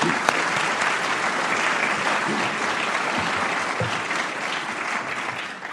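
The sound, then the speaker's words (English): A crowd at an evening event applauds steadily, giving one more round of applause to colleagues acknowledged for their hard work: a dense, even wash of many hands clapping at a constant loud level throughout, easing off slightly at the very end. “And if you could all just, while we're giving applause, just one more round of applause for them.”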